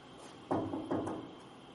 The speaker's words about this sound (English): You're sitting at home, watching football on a Sunday. Someone comes and knocks on your door.